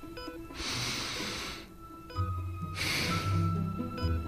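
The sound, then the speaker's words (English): A slow, deep breath drawn in and then let out, two long airy rushes about a second each, fairly loud, with soft background music underneath. “Take a breath. I'll wait. In fact, I'll do it too.”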